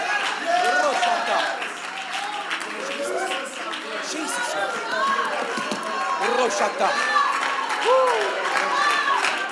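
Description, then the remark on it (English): An audience claps steadily for several seconds, a dense patter of hands mixed with scattered voices calling out and murmuring throughout, holding a fairly even loudness. “You can clap a little bit.”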